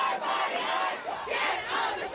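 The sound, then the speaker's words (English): A protest crowd of people both for and against abortion rights chants and shouts outside the U.S. Supreme Court in Washington, D.C. on a Monday night, after a leaked draft opinion on overturning Roe v. Wade; many raised voices blend into a loud, continuous roar that swells in waves with no clear pauses. “Crowds both in support of and against abortion rights appeared outside the U.S. Supreme Court in Washington, D.C. on Monday night.”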